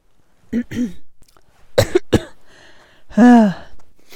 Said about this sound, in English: It's not COVID, it's just a cough.